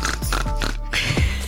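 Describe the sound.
A person mimics a pig with a quick run of loud oinks and snorting grunts, several short nasal bursts in rapid succession with no talking.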